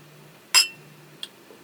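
wine glasses clinking

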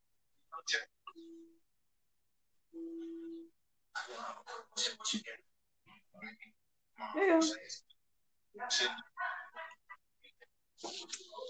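dog whimpering and yipping

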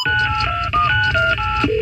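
telephone keypad dialing tones

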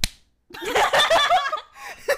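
hand slapping own body

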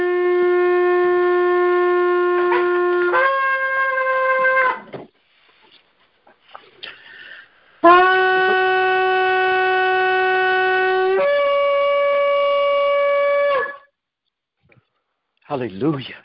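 shofar being blown

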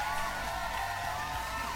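applause and cheering

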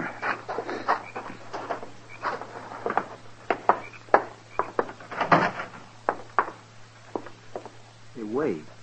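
horse

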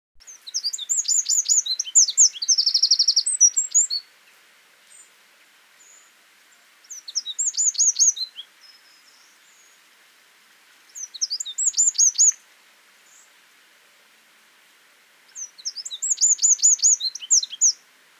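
songbird song

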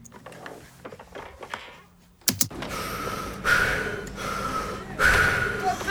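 heavy panting breaths

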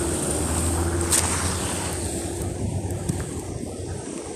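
car passing close by

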